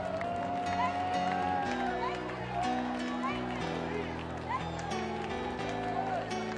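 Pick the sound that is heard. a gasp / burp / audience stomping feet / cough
audience stomping feet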